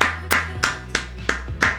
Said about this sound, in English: If you're listening anywhere, you can clap.